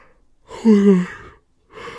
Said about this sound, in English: I keep yawning today so much.